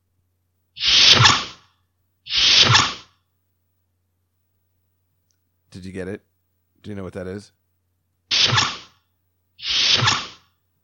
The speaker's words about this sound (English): Well, if you don't know, it's the doors from Star Trek opening and closing. He developed that sound. Isn't that funny? I don't know why. It just is. Yeah, he developed the sound, the whoosh of the ship's doors on Star Trek